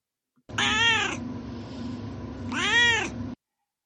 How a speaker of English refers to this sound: Now it's time for Duarte's Corner, where my cat Duarte will share his opinions.